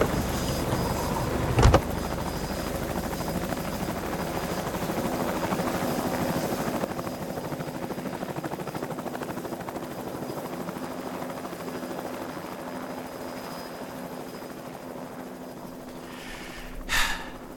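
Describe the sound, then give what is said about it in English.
A helicopter drones steadily, its broad whirring rumble filling the scene and easing slightly over time, with a sharp short burst near the start and another near the end. “If we end up doing Christmas this year, I'm putting Cool Helicopter at the top of my list.”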